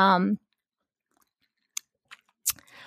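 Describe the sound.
A voice briefly at the start, then a quiet pause broken by a few short mouth clicks and a soft slurp as someone sips water, ending in a faint hiss.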